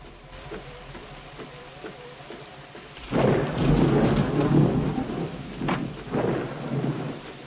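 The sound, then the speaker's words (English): Steady heavy rain hisses throughout, then a loud rolling thunderclap booms in about halfway, rumbling low and long before fading, followed by another deep crack near the end; rain pouring down at the ending of the film Back to the Future Part II. “The rain's starting to pour down, right when it seems like Marty has lost Doc Brown.”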